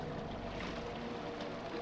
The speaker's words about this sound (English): Small boat with a solitary steersman. It seems to be skimming in our direction.